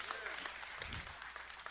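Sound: audience cheering and applause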